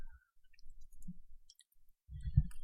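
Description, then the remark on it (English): Soft, irregular clicking of keys on a computer keyboard as someone types in a search, quiet, with a few low thumps and brief rustling toward the end. No one speaks. “Just type it in. No, now I have to get my keyboard.”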